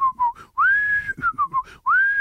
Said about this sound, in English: One person I'll just look at and whistle.